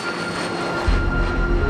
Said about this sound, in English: And when that plane took off, it's just the biggest feeling of relief I've ever had that I wasn't going to be sent for 10 years into a Russian prison camp.